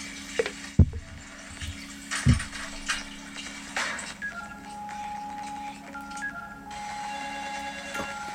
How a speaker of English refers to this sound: The phone rang.